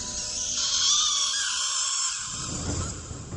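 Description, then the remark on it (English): A shrill, piercing rat scream holds for about three seconds, loud, wavering in pitch, with a low rumble rising beneath it near the end. “We see his eyes drift to the clouds as a beam of light shoots up from the building across town, revealing a shape of a rat in the sky, accompanied by the sound of a rat scream.”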